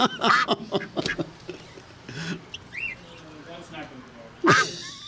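Several nasal, honking duck quacks burst out in a quick cluster, followed by a lull with faint chirpy sounds and one more loud quack at the end, fairly loud.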